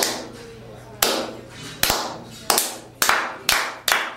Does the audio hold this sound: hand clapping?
yes